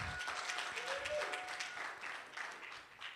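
A round of applause from an audience, dense steady clapping filling the room for a few seconds, fairly loud and continuous with a faint murmur of voices underneath.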